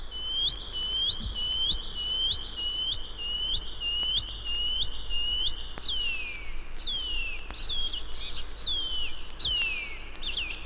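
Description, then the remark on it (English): A shining cuckoo (Pipi Whareroa) calls repeatedly: a steady run of high, thin whistled notes, shifting later into longer downslurred whistles, clear over a faint low background hum. “The Shining Cuckoo is commonly heard, but not often seen, throughout the main islands and many offshore islands of New Zealand during the summer.”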